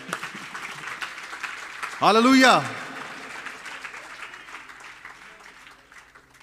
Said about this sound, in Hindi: क्या आप उनकी तारीफ में ताली बजा सकते हैं?